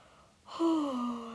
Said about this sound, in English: I just yawned.